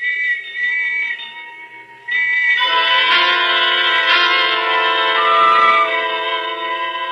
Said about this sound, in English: And the whistles and bells all around.